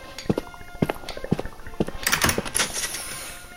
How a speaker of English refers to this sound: I should probably lock the door then.